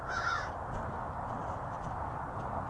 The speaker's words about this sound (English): Did you hear those birds? A couple of crows, looks like, up on top of this apartment complex.